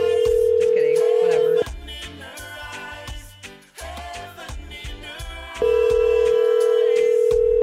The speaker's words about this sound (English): It's just fun to hear the phones ringing, actually. You guys don't know what the phones are until you fucking work with phones.